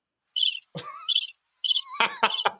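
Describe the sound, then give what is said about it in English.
Crickets chirp in quick, bright bursts, about five short trills in a couple of seconds, moderately loud, with no voices and a few thin tonal sweeps between them. “That wasn't 69 crickets.”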